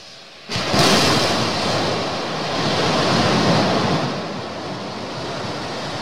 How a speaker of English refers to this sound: Check this shit out. That is so cool. That's one Raptor engine. see how it gimbals, the engine? So the stack's still straight, but the engine's moving?